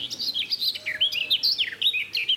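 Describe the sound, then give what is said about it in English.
A garden warbler sings a fast, continuous warbling phrase of rich, bubbling notes, clear, with no voices over it, beside a cattle trough. “beside a cattle trough because there's a garden warbler. Eyeing me suspiciously, but singing quite well.”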